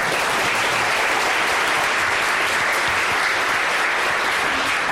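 An audience applauds steadily throughout, a dense, even wash of many hands clapping at a strong, sustained level with no talking over it.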